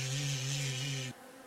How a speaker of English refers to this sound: And with a horrible simultaneous click, 1,000 wings are open. And with a bone-rattling buzz, thousands of these chitterers take flight all around you, buffeting against the car.